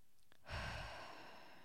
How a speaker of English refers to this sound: I take a massive breath in, set my arms low but engaged and ready to push, and I will my hips to squish down smaller.